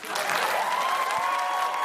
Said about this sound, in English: Look at everyone clapping for her, and no one's clapping for her behind her.